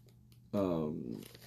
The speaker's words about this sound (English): They do put a sticker over the top, so opening it is not a little easy. I gotta get my knife out again, rip the sticker.